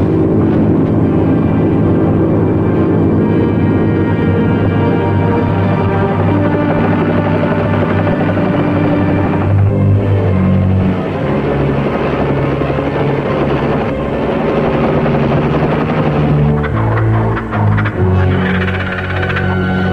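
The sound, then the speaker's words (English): A loud, steady airplane engine drones continuously as the plane waits, a dense low rumble with a throbbing hum that shifts slightly in pitch partway through, with no voices. “The plane is waiting for us.”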